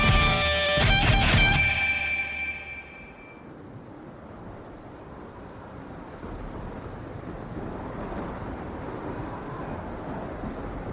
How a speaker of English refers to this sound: You hear the crash of a bolt of lightning.